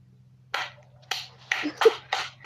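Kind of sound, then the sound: human body sound, clapping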